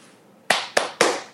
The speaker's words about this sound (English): So when you start the recording on your video, and you start your recording on your audio device, you just simply make sure that they're both recording, and then you clap really loud 3 times.